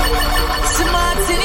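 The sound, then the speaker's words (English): A phone ringtone plays loudly and steadily for the whole moment, its bright electronic tones layered over a busy, cluttered background. “Listen, make sure you leave your phone on Do Not Disturb more time, okay?”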